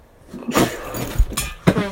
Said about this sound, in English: Sorry. That sneeze scared the cat.